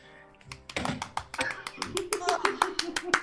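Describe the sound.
A rapid, steady run of sharp hand claps, over a dozen in quick succession, close and fairly loud, with voices murmuring underneath.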